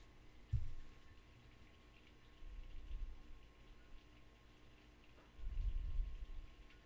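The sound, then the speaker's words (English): Soft, steady rain hisses faintly in the background, with a few low, muffled thumps and rumbles rising and fading over the patter. No one speaks. “it's raining”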